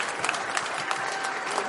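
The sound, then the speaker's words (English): A large crowd at an inauguration applauds as 44-year-old Maryland Governor Wes Moore takes the stage to be sworn in, in a dense, steady wash of clapping, loud and sustained throughout with no voices standing out. “That's the crowd as the 44-year-old took the stage to be sworn in on a Bible owned by the legendary Frederick Douglass, who escaped slavery in Maryland before becoming an author and famed abolitionist.”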